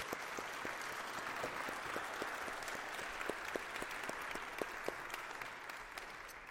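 A church audience claps steadily for several seconds in a round of applause for a person, a dense, even patter of many hands with a few sharper individual claps standing out, sustained at a constant level without fading.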